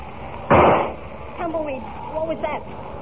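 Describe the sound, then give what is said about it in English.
A single loud gunshot cracks out and decays over a fraction of a second, followed by softer, wavering voice-like sounds rising and falling afterward. “I heard a shot,”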